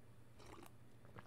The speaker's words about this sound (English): What I'm going to do is take another sip of this delicious elderflower cordial diluted juice.